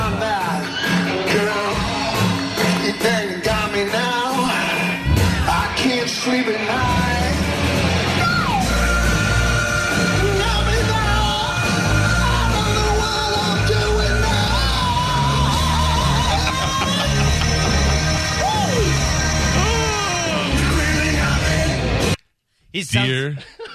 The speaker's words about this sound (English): In the audio I gave you, I put a marker in there. If you play it at that point, he just, like, screams. Okay, and it sounds on. Like a drunk guy.